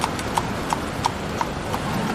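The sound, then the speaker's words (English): Horse hooves pulling a magnificent carriage carrying a dignitary clip-clop at a steady, even pace, about seven crisp knocks over a low rumbling background, with no voices. “And one day he sees some dignitary riding by in a magnificent carriage.”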